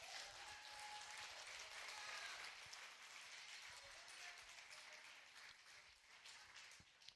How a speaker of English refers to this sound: Amen? Get the Lord a hand clap.